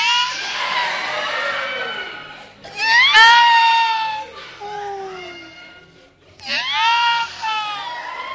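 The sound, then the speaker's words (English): A voice imitates a sister's siren-like snorting with loud, wailing vocal glides, three rising and falling bursts that sweep up and down in pitch with brief gaps between them. “And the sister that snorted like a siren.”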